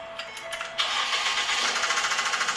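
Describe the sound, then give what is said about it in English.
A car engine that needed a lot of oil turns over and then runs roughly, with a fast, uneven rattling pulse, fairly loud, with no one talking. “And then, this is what my car sounded like the day after.”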